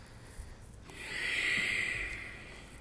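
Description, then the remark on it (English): A single long ujjayi breath during yoga practice, audible with a steady hissing, throaty rasp, swelling and fading over about a second and a half, fairly quiet, with no talking. “Ujjayi, alive. It's your life force and the motivating element that you can provide others.”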